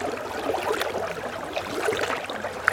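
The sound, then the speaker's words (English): Soft, steady water sounds from a kayak paddle dipping and pulling through calm, glassy Crooked Lake in Sylvania Wilderness on a mostly cloudy morning, paddling along the shore, with gentle trickles and small splashes and no voices. “I launch my kayak at Crooked Lake and paddle along its shores.”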